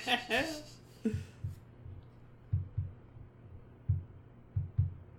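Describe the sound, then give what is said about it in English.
Low, muffled thumps land in uneven pairs like a heartbeat, a speaker's foot tapping, with brief bits of speech-like sound near the start. “Is that heartbeat coming through? What is that? That's my foot.”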